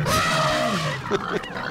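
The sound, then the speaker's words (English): Hogs grunting and snorting, a loud, rough, continuous stretch of overlapping grunts with a few sharper squeaky bursts near the end. “Okay, elephant. Hogs.”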